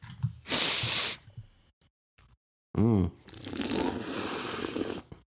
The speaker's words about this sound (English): I'm going to pop this Coke that I've been sitting on for a while.